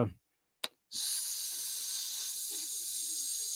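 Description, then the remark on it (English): A person makes a long, steady hissing sound like a snake, fairly loud, after a brief sharp hiss and a moment of silence. “Are you a snake?”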